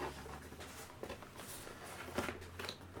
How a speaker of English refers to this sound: Everybody's thinking of music as I'm typing in my little thing.